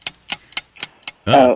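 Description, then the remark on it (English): A game show clock ticks in a steady, quick rhythm, five crisp clicks, as a 30-second round of a guessing game starts on the John Boy and Billy radio show, before a short burst of a voice cuts in at the end. “Start the clock now.”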